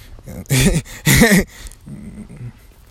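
A dog growls in two loud bursts about half a second apart, each rough and snarling, followed by a quieter low rumble trailing off.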